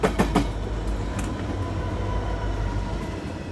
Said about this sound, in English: So you hand the phone back to the clerk, and the whole station starts to rumble.